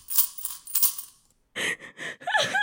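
Pocket change jingles in two bright, rattling shakes, then a run of short voiced, tonal sounds follows, with no clear words.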